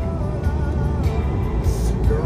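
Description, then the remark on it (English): Steady, dense low rumble of bumper-to-bumper car traffic crawling along, engines droning continuously with faint hiss and swells of passing vehicles, no voices present. “because this traffic is bumper to bumper right now.”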